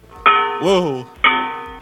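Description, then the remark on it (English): Two loud metal pans struck about a second apart, each giving a sharp clang that rings on like a bell, with a brief voice sounding between the strikes. “Like sing that and like bang the pans to the beat of the music.”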